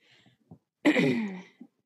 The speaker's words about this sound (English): Hold on. I've got to cough real quick. Sorry.